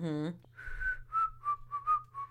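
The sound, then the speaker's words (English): A brief voiced sound, then a casual whistled tune of about six short, falling and rising notes, clear and close, played alone with no talking over it. “He might as well have started whistling.”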